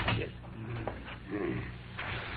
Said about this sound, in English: That's the air from the tunnel coming in through this valve, lady. When the pressure in here is the same as it is out there, that big door opens by itself.